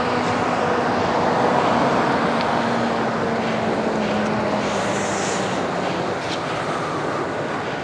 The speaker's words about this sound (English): But, fucking trucks, man.